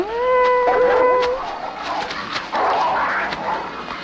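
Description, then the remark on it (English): A siren-like whistle tone like the Purge siren swells upward and holds steadily for about a second, rich in harmonics. It gives way to rough, noisy yelps and scuffling as a dog reacts to the whistle. “It's like the purge sound. Yep. Purge commencing.”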